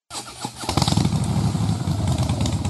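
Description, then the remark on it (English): A motorcycle engine fires up and revs in a radio advert for Harley Heaven, settling into a loud, deep, pulsing rumble that throbs steadily for a couple of seconds. No voices. “Who needs a revver for Harley Heaven?”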